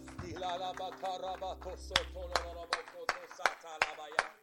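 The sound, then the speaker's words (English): An audience claps hands unto the Lord as they are being seated, sharp loud claps landing together about every half second in a steady rhythm, over sustained tonal music and voices that start before the clapping begins. “Let's clap our hands one more time as you're seated unto the Lord.”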